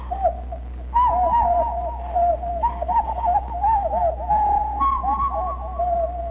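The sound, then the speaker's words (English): Toy whistles, blown by about 35 kids around a town on porches, house roofs and garage roofs, sound cuckoo calls over and over: warbling, wavering hoots that overlap continuously with no pauses, fairly loud, above a steady low background hum. “The whole town would be alive with cuckoo birds.”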